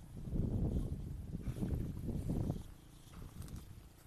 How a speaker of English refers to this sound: Someone is having fun. Maybe this is a boat.